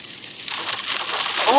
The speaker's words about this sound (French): Oh! OK, il y a des happenings, là. Il pleut au corps ici, la gang. On va se mettre les wipers. C'est peut-être même un petit peu dangereux, là, mettons, là.